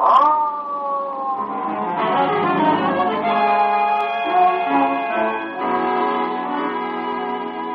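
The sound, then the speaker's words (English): A siren wails steadily and loudly for several seconds, its tone sliding and holding in long sustained rises and falls, with no voices over it. “Come on, Wayman, hit that siren.”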